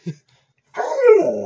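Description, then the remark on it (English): A dog gives a short, quick yip, then after a brief pause lets out a longer, whiny, drawn-out vocalization that slides downward in pitch, with no talking, while the dog is trying to eat the cat food. “Dog's trying to eat the cat food.”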